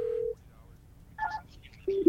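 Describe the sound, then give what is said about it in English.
Telephone keypad dialing tones: a few short, steady electronic beeps pressed one at a time with pauses between, fairly clear against a quiet background, as someone dials to reach a person by phone. “We're trying to get him on the phone, so then that way he can.”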